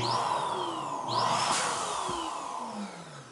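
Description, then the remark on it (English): A steady, buzzing electric balloon pump, an Amazon product, whirs continuously with a rushing airflow hiss, while faint tones slowly glide in pitch as a balloon fills quickly. No one speaks. “But, you know, if you're having a big birthday party, you don't want to blow up balloons.”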